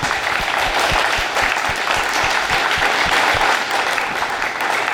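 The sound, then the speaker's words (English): A crowd claps steadily for Colorado legislators, a dense, sustained wash of applause that holds its energy for several seconds without a break. “So can we give a round of applause to our legislators?”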